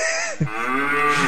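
A cow lets out a single loud, drawn-out moo with no talking, its voice dipping briefly before swelling into a strong, steady bellow.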